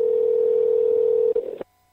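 A steady, loud telephone ringing tone from an outgoing call hums continuously for about a second and a half, then cuts off abruptly into silence. No one speaks.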